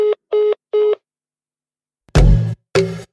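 Three short, evenly spaced telephone keypad tones beep in quick succession, followed after a pause by two loud, harsh, buzzing bursts. No one speaks.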